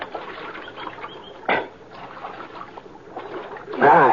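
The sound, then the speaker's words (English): Water of Little Creek sloshes and splashes as riders who have climbed down from their horses get a drink, with a steady trickling texture, a sharp splash about a third of the way through and a louder, churning splash near the end. “And we climbed out from our horses and got a drink of water.”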